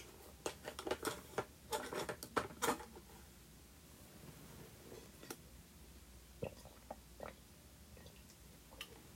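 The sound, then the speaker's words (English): Someone quietly sips water, with a flurry of small clicks and mouth sounds early on, then a few sparse ticks and swallows in near silence. “But anyways, hold on, let me get a sip of my water.”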